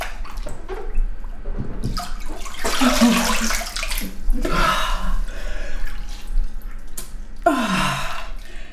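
Fairly loud splashing in a bath of cold water as a person, between sauna sessions, dunks their head under and lifts it out, with several surging bursts of sloshing and dripping in between and no one speaking.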